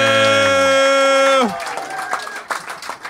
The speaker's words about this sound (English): Huge round of applause